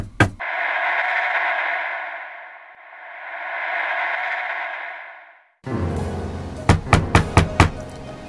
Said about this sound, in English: Knocked on the door.